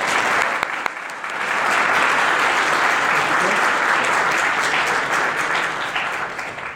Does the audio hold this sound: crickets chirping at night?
no